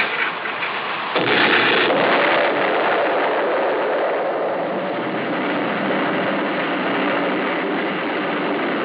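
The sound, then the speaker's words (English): An explosion set off with a detonator plunger: a loud blast erupts about a second in and swells into a long, dense roar of rumbling and crackling debris that persists without letup for several seconds. No one speaks. “Okay, Lee, the plunger. Here, sir. All ready. All right, then lie down. Quick, get down. Here she goes.”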